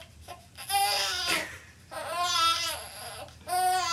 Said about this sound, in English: That's pretty much the sound I hear all night long for the past 9 years of my life. What is it? A baby crying.